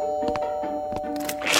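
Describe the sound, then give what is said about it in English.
A doorbell rings as a steady, sustained electronic tone, with soft scuffing noises underneath and a brief hiss of noise at the very end. “I don't think Whittier rings doorbells.”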